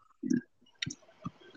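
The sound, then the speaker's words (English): Soft papery rustles and light flicks as thin, unlined sketchbook pages are turned, three brief bursts spaced across the moment with a faint crinkly texture between them, no voices. “These pages are so thin!”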